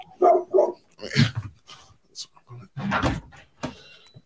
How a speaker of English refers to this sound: Sorry, I got a brand new puppy. She's barking at leaves falling. It doesn't really matter. She'll bark at anything. Okay, I was gonna say, what kind of dog do you have? She's a pit bull, so she's a strong one.